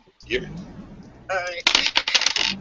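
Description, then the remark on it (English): Dice rattle and clatter in a quick burst of sharp clicks on a hard surface, fairly loud, following a brief moment of someone speaking. “Let's not jinx the dice, please.”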